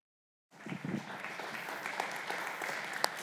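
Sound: audience applauding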